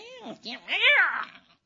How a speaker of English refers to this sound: We're getting a cat fight, huh? Stop it. You snarl and hiss.